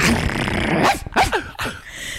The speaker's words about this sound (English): Welcome bark. Woof woof woof woof woof woof woof woof woof woof woof.